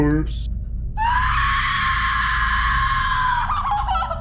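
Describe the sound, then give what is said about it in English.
In a horror film, a woman lets out a loud, piercing scream as she finds a corpse in a dark basement. It is high and sustained for about two and a half seconds before breaking off, over a low rumbling background. “That's out the most blood-curdling scream.”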